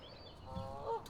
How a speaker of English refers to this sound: And there are the geese honking away. The goslings have been born recently, and the geese have become very protective of their young. There has been much hissing of geese. Much hissing and honking.